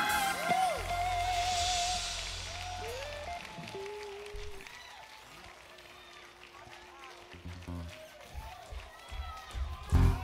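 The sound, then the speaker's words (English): An audience claps and shouts to God in praise, with whoops and cheering voices over steady applause. It starts loud, eases off, then swells again toward the end. “Let the people clap their hands and shout to God with a voice of triumph one last time.”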